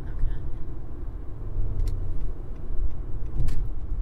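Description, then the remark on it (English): A rental car driving east out of Dallas, Texas, heard from inside as a steady low engine and tire rumble that fills the whole stretch, with a couple of brief faint clicks partway through. “by the time we were finally driving east out of Dallas, we were running behind schedule”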